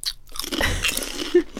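Someone bites into and crunches kettle salted crisps, a quick series of sharp, crackly crunches over a second and a half, with no talking.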